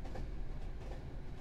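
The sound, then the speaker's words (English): A freight train with boxcars rolls steadily along the rails with a continuous low rumble and a faint rhythmic clatter of wheels running underneath. No voices. “She woke to find herself in a boxcar full of corpses, which was damn lucky, because it meant she now had a one-way train ticket to exactly where she wanted to go.”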